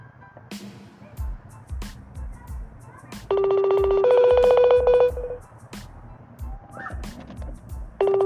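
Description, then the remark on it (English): A phone ringing tone plays for about two seconds as a call is placed to the speaker's sister, a steady electronic tone that steps up in pitch partway through, over low background rumble and scattered sharp clicks. “We're gonna see if baby sister answer the phone.”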